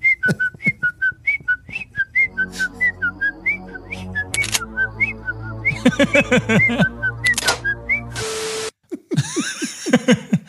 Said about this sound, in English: There you go. I'll just whistle a happy tune.